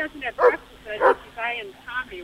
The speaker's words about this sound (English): What kind of dog is this? I think it's that dog that was in the back of the fence. The German Shepherd?